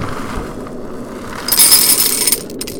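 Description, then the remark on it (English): Dry General Mills Count Chocula, Frankenberry and Booberry cereal pours into a bowl in a crisp, hissing rattle that lasts about a second, followed by a couple of short trickling bursts. A quiet, low hum comes before it, and no one speaks. “So I'm going to pour these into my bowl here.”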